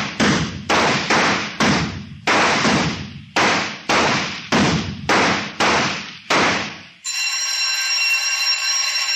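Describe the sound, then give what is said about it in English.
About ten loud, sharp gunshots fire in rapid succession at a shooting range during a rapid-fire round, each with a short echoing decay, then a steady electric bell rings for a couple of seconds. No one speaks. “Second half, rapid fire, load and lock.”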